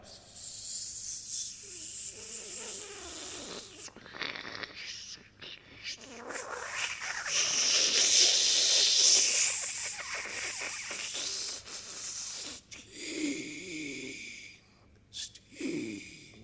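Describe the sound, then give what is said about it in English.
A voice performing a sound poem about the power of steam makes long, forceful hissing and sputtering noises imitating escaping steam, swelling to a loud sustained hiss midway, with breathy gasps and short bursts before it trails off. “The irrepressible power of steam.”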